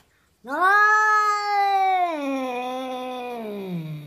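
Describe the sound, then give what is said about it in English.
A cat lets out one long, drawn-out caterwauling meow, loud, its pitch sagging slowly lower as it trails off over several seconds, with no voices around it. “Number 2, The Black Cat.”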